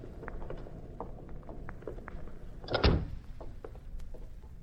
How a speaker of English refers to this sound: I'll get the door open. The skeleton key should do the trick.